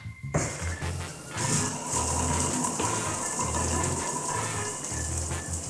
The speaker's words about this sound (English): permission for shower access. Daily ration, please. Permission granted. Your 3-minute water ration begins now.